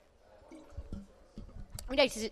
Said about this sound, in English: So I'm just going to have some water.